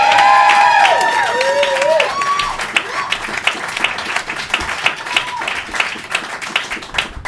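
An audience bursts into applause with some cheering and whoops at first, then the clapping settles into a steady patter of many hands that gradually thins out.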